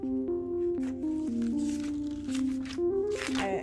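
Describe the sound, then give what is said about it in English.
Paper rustling and a few crisp page flips as a small notebook with written notes is opened and handled, heard over a sustained, steadily shifting musical tone. “And I know that we had to decipher the code in a previous episode, so let me open up... I think I wrote the notes in this here thing.”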